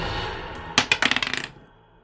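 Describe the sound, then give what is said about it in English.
Dice clatter onto a hard table, a quick burst of sharp clicks that speed up and grow softer as they settle, with no voices; the roll comes to 13. “Depends on the dice. That's a 13 against your touch.”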